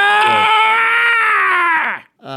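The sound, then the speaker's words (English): A person imitates a loud, drawn-out scream of pain, as of a character shot in the side of the kneecap, held for about two seconds before the pitch sags and breaks off, followed by the start of another cry. “You just pop that off to the side, and he lets out a scream.”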